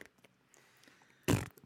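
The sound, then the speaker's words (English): A single short, loud raspberry burst, a person blowing a mouth fart noise, lasting about a quarter second after near silence, with no talking around it. “Yeah, but then she wouldn't get to hear me make fart noises.”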